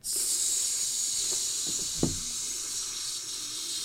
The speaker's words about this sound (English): But I think it's time to start up this grill.